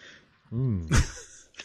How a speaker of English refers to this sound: I know I'm like coughing.